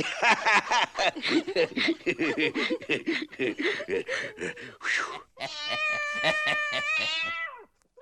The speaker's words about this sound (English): Come on now, be a nice little pussycat. Oh, you be a feisty one, you be.